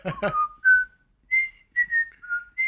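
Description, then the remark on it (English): A person whistles a short theme melody from a 1960s TV show: a brief vocal sound, then several clear sustained notes with small gaps, the pitch stepping up and down. “I can't whistle that well.”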